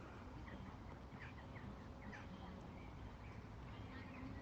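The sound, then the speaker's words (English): A massive black crow or rook on top of Shibden Hall calls in a few short, harsh bursts, fairly faint against a steady wash of outdoor background noise, with no talking. “And a massive black crow or rook on the top of Shibden Hall.”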